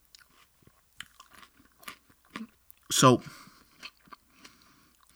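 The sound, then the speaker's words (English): Wet, crunchy chewing of a second bite of raw onion with scattered crisp crackles, broken midway by one loud burst where a strained voiced sound mixes with the crunch; a brief spoken word comes early. “And let's get into another topic here as I take my second bite of the onion.”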